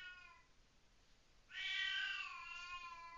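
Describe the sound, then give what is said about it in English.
A cat meows twice: a softer, fading cry first, then a louder, drawn-out yowl that rises sharply and trails off, clear with no talking. “Good Christ, cat.”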